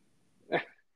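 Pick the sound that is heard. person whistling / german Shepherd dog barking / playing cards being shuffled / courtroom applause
german Shepherd dog barking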